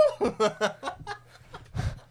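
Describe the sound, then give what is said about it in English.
A person imitates a turkey gobble: a quick run of warbling, throaty pulses lasting about a second, followed by a short breathy burst. “And then gobble.”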